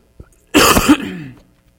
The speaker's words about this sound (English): I muted it after I coughed into the microphone. Sorry. Send me the bill for your ear, nose, and throat doctor this next week. Burst eardrums.